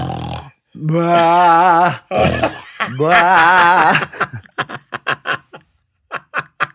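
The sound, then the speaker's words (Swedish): A voice imitates a father's loud, drawn-out snoring and deep bellowing rutting-deer calls in alternation, two long groaning sounds, followed by a run of short, choppy laughter bursts. “Så mamma låg där då, vaken, hade en snarkande pappa på ena sidan och en brunstig hjort på andra sidan.”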